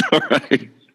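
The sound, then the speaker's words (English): A sneeze breaks out in three quick, forceful bursts, each breathy and loud with a voiced edge, fading into silence within a second. “God bless you”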